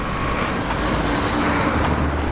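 Steady, dense town centre road traffic rumbles throughout as it builds up, with cars and heavier vehicles blending into a continuous low roar, no voices.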